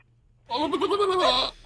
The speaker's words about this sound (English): What was that? That's a goat. That's not a goat. Yes, it is.